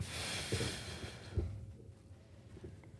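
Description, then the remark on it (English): Someone imitates sniffing: breathy intakes of air with a couple of short nasal bursts, then it trails off into quiet breathing and low background noise. “Sniffs it.”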